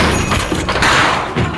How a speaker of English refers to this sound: You feel sure enough about this to bust down the door? I do. All right, let's do this.